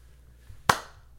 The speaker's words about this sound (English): I'm going to just let it die for like 5 seconds and clap.